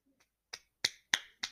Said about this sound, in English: Clap. Clap, people.